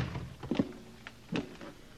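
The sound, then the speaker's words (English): A front door opens and then shuts, giving two dull wooden thuds less than a second apart, not loud, with no voices. “I'm going out the front door.”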